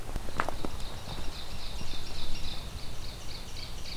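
An ovenbird sings its loud, ringing teacher-teacher song in a steady run of repeated two-note phrases over footsteps crunching along the main trail from a parking lot in late May.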